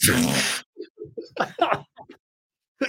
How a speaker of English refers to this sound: Hey, I didn't rip one. I just sneezed.